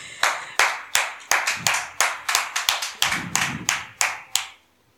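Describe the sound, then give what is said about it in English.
An audience claps for Reverend Anna for about four seconds, sharp crisp claps in a loose, uneven rhythm that stops abruptly. There are no voices. “Let's clap for Reverend Anna.”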